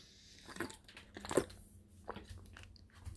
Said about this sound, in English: I'm just getting a sip a little bit of my drink real quick.